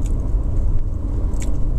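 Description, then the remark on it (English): Chewing of food, with moist mouth sounds and a few brief crunchy clicks over a steady low rumble; no one speaks. “Chewing my food right now.”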